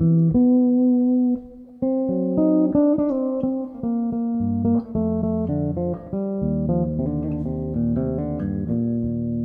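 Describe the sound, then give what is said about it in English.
A sustained melodic instrument plays a slow sequence of rich, harmonic chords and notes, each tone ringing out and blending into the next with a lush reverb wash. No voices. “Just the normal reverb on this thing sounds absolutely amazing.”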